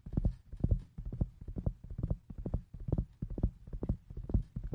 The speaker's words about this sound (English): And the next thing you know, you heard the horses galloping down.